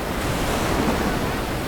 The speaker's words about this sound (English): As the wall of water broke over the Mignonette, the men clung to any wood and rigging within reach.